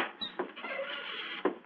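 An unlocked house door is opened: a couple of soft clicks from the latch, a brief low creak as it swings, then a final bump, all over a steady hiss with no voices.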